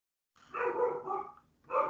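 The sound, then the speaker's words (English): A dog barks loudly, one drawn-out bark followed after a brief pause by another, with no talking over it. “Oh, and apparently my dog is also going to fight Raven in a bull rope match.”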